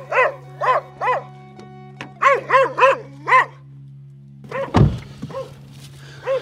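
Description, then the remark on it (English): A dog barks repeatedly in short bursts at a reporter knocking on doors, first a few spaced barks, then a quicker run of them, with a thump partway through and a steady low hum underneath. “One dog does not like me.”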